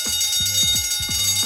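An electric fire alarm bell rings continuously and loudly, its clapper hammering in a rapid, rattling clang with a bright metallic shimmer throughout. No voices are heard.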